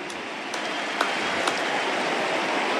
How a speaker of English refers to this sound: What about a round of applause for the Bombers, who are so outstanding today?